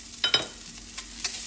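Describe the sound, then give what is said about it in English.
About 20 mealworms sizzle steadily in a hot pan with a thermostat, with a handful of sharp pops bursting irregularly over the constant frying hiss. No one speaks. “Oh, yeah, I can see them popping.”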